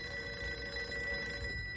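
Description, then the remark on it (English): A telephone rings with a steady, sustained bell tone that continues through the whole moment, heard alone at a modest volume with no voices. “Another one? If this really is a plague of wolves, this phone will be busy almost all the time from here on until we somehow ease the situation.”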